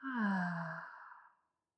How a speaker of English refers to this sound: Let's begin with a few deep breaths. You can inhale through your nose. And exhale out the mouth.